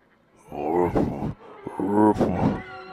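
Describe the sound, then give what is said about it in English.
A voice imitates a whale sneezing, twice in a row: each is a loud, drawn-out, groaning wind-up that breaks into a harsh, breathy burst. There are no spoken words. “Yeah, there's one thing whales hate.”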